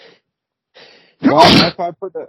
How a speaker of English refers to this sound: Bless you. Thank you. Sorry, I tried to hit mute. I don't know if I got it in time,